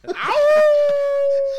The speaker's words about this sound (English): The wolf coming in hot. Wow. Coming in with a howl.